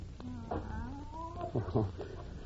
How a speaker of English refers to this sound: That's just Professor Kimberly's cat. No one's been able to get near it since the professor's death.